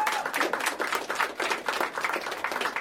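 Steady applause from a crowd for a Teacher of the Month at an Excellence Night event, many hands clapping in a dense, continuous patter at moderate loudness, with no voices over it.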